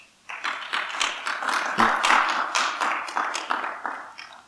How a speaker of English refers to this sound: Let's clap for her.